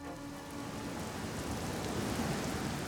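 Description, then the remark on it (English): Steady rain pours down in a dense, even hiss, with a low rumbling undertone suggesting a storm, constant throughout without any voices. “another storm hit Dottie's property, and the blobs fell with the rain once more”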